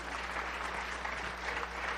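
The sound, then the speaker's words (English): Steady audience applause, a dense wash of many hands clapping at a fairly even level for the full two seconds, with no voices standing out, as the first five people come up to give their testimony. “We've got them coming up now, our first five folks, and you need to clap for them.”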